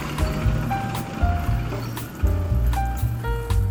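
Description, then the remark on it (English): Beer glugs and gurgles as it is drunk in a toast at a house after watching a rugby win, in uneven bubbly pulses with a faint tonal ring over a muffled background. “Cheers, we start with a dink today.”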